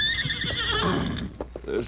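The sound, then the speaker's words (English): A horse whinnies loudly, a long shrill neigh that wavers and falls in pitch, followed by a few short snorting breaths. No one speaks. “This horse, I must have been riding, fallen off.”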